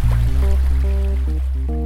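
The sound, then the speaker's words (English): Water trickles and gurgles, a steady liquid flow with bubbly, shifting tones running continuously and fairly loud throughout, with no voices. “When recording sounds of water, make sure you've emptied your bladder, because”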